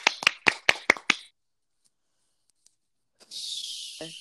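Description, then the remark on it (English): Six crisp hand claps in a quick, steady rhythm, fairly loud, followed by silence and then a brief breathy hiss. “has voted to ban clapping permanently. Clapping? Clapping, you know.”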